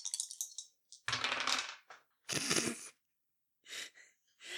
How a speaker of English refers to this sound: I think I just rolled my first snake eyes of the whole campaign. Oh, no. That's no good.